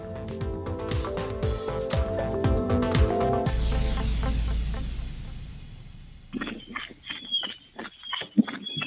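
Quick, rhythmic footfalls of someone running, close and fairly loud, arriving in the last few seconds after a stretch of music and a swelling whoosh.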